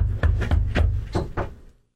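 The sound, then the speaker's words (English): Five hollow knocks on a fake-wood door, three evenly spaced raps followed by a short pause and two more, over a low background hum before it falls quiet. “Like, I can't even knock on anything. This door's...”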